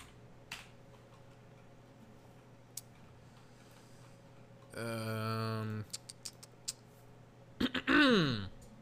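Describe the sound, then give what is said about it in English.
A person clears their throat in two separate bursts, a low rumbling one followed moments later by a harsher rasp, with faint clicks and taps in the background. “Sorry for clearing my throat so much.”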